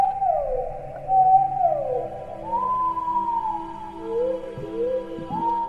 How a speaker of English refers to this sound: And this is a blue whale song.